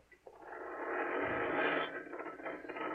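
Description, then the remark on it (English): A garage door mechanism grinds and rattles steadily as it opens, a continuous mechanical whir with ratcheting texture that swells after a brief start and holds for a few seconds, with no one speaking. “You open the garage door, then jump into the car.”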